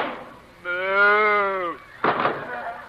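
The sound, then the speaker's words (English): A single drawn-out cow moo, fairly loud, lasting about a second and sagging in pitch at the end, followed by a short breathy burst of noise. “She's a cow.”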